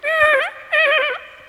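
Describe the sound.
A voice imitates a horse neighing with two loud whinnying bursts, each with a wavering, quivering pitch and a brief pause between them, and no other talking.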